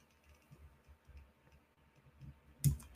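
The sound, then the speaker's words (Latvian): Quiet scraping and tugging, ending in a single sharp snap as the tightly pressed-in lower metal mesh coil is yanked out of a vape tank. “Nu, vienīgais tu mums atliek ir ņemt pēc šiem te un raut viņu ārā.”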